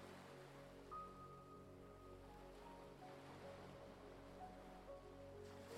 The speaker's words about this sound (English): As you listen to the sound of the waves, imagine yourself stepping deeper into the cool ocean water.